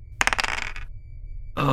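Dice rolled in a tabletop role-playing game clatter across a hard surface in a quick burst of rapid clicks that fade out within about half a second, followed by a pause before a louder sound begins.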